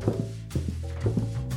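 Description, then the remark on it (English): A run of soft, evenly spaced footsteps climbing stairs, heard beneath a steady sustained musical tone, unhurried. “There are footsteps on the stairs.”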